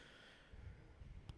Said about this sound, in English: You might hear a fan going off in the background. Oh, yeah. Forgot about that fan. All right. It's hot.